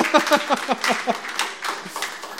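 A short burst of spontaneous applause, a dense patter of clapping mixed with a few raised voices at the start, fading slightly over about two seconds.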